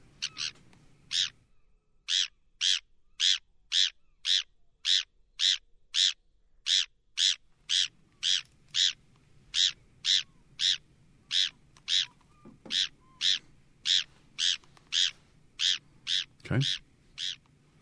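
A Bonaparte's gull calls over and over, a steady string of sharp, raspy notes about two per second, loud against a faint low rumble.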